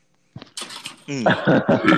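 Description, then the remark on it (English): A few short, rough bursts open, then a loud, drawn-out burp rumbles with a low, croaky tone for nearly a second, with no talking. “I'll give that burp like a 7 out of 10. That was a solid burp.”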